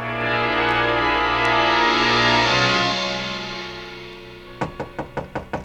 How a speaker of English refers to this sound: The knock surprised me. I'd forgotten about the bellhop. I got up to go to the door